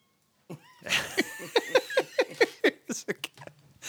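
A cat named Chance yowls loudly in the background, a strained drawn-out cry breaking into a rapid series of short, rhythmic wails with no talking over it.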